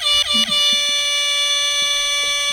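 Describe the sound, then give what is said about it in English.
A loud, blaring air horn sound effect at the end of an advertising spot: two quick stuttering blasts followed by one long sustained honk that holds steady to the end, with no one talking. “Because it's not like an actual air horn. It's like a air horn sound effect.”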